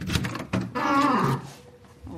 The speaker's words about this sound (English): Oh, lovely squeaky door.